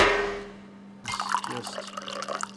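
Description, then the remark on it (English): Pennsylvania rye whiskey pours into a glass in a short, steady trickle with a burbling, splashy sound, fairly quiet, following a brief fading hiss. No one speaks. “Wow, that's a nice pour for you there.”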